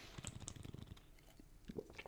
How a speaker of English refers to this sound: Take a sip of beer here.